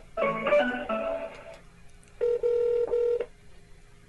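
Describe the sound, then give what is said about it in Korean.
A quick run of telephone dialing tones as a phone call is placed to a guest, followed by a steady, buzzy ringing tone pulsing in short bursts on the line, clear and fairly loud with no voices. “네, 전화 통화를 한번 해보겠습니다.”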